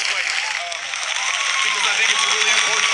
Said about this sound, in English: So he's trying to stem the clapping right away. Like, don't get carried away yet.